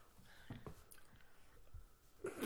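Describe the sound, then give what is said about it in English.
Someone chewing candy, with soft, irregular wet clicks and crunches over a quiet background, ending in a brief louder rustle. “You got yours in your mouth. He's chewing.”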